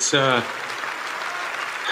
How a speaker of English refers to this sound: And the crowd goes wild, thousands of people.